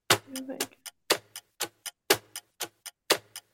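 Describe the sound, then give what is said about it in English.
A clock ticks loudly, sharp clicks alternating in a steady tick-tock pattern about twice a second, with nothing else audible around them. “Okay, that was my clock.”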